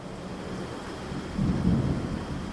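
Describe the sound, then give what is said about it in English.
Steady rain hisses throughout while a deep roll of thunder swells up midway, rumbling loud and low before easing back into the downpour. “that afternoon, another storm blew up and they were pushed yet farther north.”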